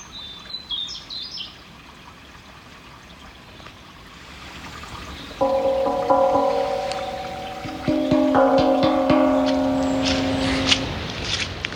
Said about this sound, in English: So we started off heading up, and this was Christmas morning, heading up to feed the boys, and this is what it sounded like. Started off near the house, and sound of running water and the birds singing. Wonderful.